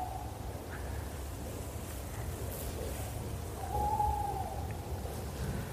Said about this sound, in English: That's just close, is he? But that's proper owl. Yeah. Lovely.